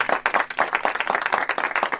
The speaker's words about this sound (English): We think it deserves applause for sure.